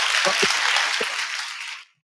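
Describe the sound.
A burst of applause, a dense wash of many hands clapping at a steady loudness for almost two seconds before cutting off abruptly, with a couple of brief low voice sounds mixed in.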